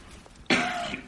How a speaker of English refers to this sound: And I'm fighting off a cold, which means I'm going to cough at the moment. So pardon me, listeners.